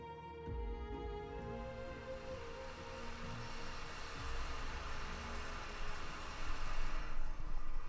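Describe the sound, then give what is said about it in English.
An electric kettle heating water aboard a boat on a river, a steady rushing hiss with a faint mechanical hum beneath, growing slightly louder and rougher toward the end. No one speaks. “So the kettle's on.”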